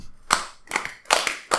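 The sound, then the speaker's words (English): Four sharp hand claps, palm striking palm, in a steady slightly uneven rhythm about a third of a second apart, fairly loud with no voices. “What you do is that you clap your hands, but your palms hit your palms like this.”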